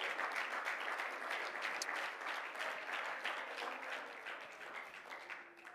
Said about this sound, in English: Well, let's clap our hands and praise Him.